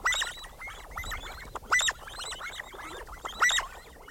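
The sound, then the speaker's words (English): A flock of sandgrouse, pointy-tailed relatives of pigeons, calls in bright, throaty bursts, with louder chirring notes rising roughly every couple of seconds over a busy background of overlapping chatter from many birds. “Sand grouse, pointy-tailed relatives of pigeons, live in some of the most parched environments on Earth.”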